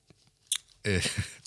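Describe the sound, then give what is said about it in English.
Paper rustling: a brief crisp crackle, then a longer, louder burst of dry crinkling and scraping that lasts around half a second before trailing off into quieter rustles. “I love the wrestling of paper in the background”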